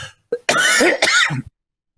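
A man coughs and clears his throat in a quick harsh burst lasting about a second, with a short grunt before it and a low rasp trailing off at the end, then silence.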